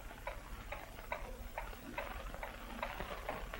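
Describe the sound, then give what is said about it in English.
A clock ticks steadily at an even, brisk pace, each soft tick evenly spaced over a low background hiss. No voices are present, and the ticking stays quiet. “The clock passes 4:30.”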